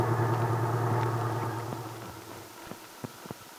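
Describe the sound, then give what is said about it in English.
A small truck's engine rumbles at a low idle, then gradually fades as the truck pulls into a parking space on Main Street and stops, followed by a few sharp clicks and knocks. “Randy pulled into a parking space on Main Street. He jumped out and opened the door of the little truck”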